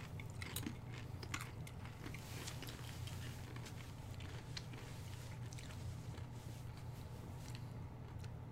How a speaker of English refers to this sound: You're not supposed to eat crunchy foods after a root canal, right? Oh, yeah, you're not supposed to eat crunchy foods. And you just ate a chip.